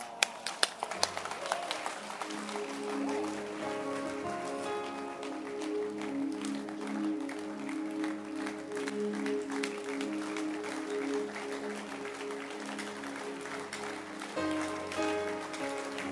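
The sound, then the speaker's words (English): An audience claps their hands for the word of God in a dense, steady wash of applause that starts with a few sharp claps and holds loud throughout, with sustained musical tones sounding underneath. “Clap your hands for the word of God.”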